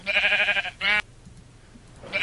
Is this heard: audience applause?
no